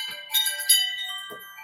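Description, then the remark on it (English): Wind chimes at a house jingle with bright, overlapping metallic tones that ring and sustain, a couple of fresh strikes layering over lingering shimmer, moderately loud with no voices. “I was just doing my wind chimes.”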